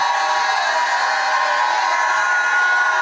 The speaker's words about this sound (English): Go ahead and shout like you never shouted in your life.